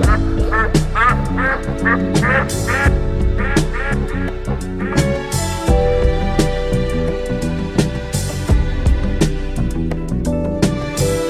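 Repeated quacking from a duck call, loud, sounding in quick bursts over a dense, steady musical beat with sharp percussive hits throughout.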